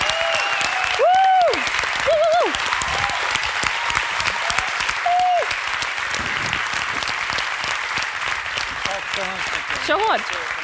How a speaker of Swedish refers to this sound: Han är ju kändis på riktigt. Han är kändis på riktigt. Strängnäs svar på, vad ska vi säga? Jimmy Fallon. Jimmy Fallon. Applåd, Kristoffer Triumf!